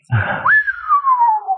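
A short breathy burst, then one long, fairly low whistle that swoops up and slowly glides downward in pitch, held steady at moderate loudness with no talking.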